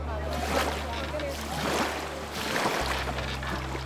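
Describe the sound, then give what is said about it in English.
Small kayak-sized wooden fishing boats out on open water at the Reed Bank: a steady low engine-like hum runs under broad splashing and wash, with a brief dip near the end and faint voices in the background. “They eat breakfast, and then they board their kawil.”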